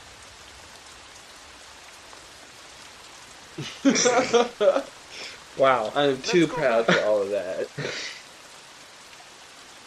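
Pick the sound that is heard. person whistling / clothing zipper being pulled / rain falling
rain falling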